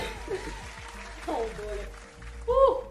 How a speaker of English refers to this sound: So Fine waits for a few seconds for the audience to stop applauding before saying her next line.